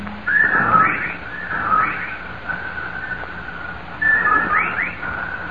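A large number of whippoorwills call outside a ground-floor bedroom window in a steady, repeating rhythm, their loud whistled phrases rising and falling again and again over a faint background hum, with no one speaking.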